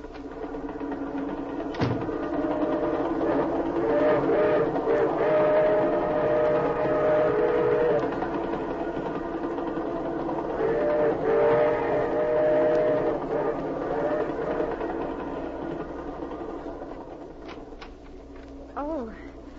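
A train rumbles steadily along with a continuous mechanical roar, while sustained whistle-like tones sound over it in long drawn-out blasts, loud.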